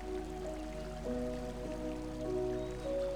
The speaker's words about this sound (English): The water gently flows around the large flat rocks at the surface. You reach down and touch the water. It feels cold and refreshing.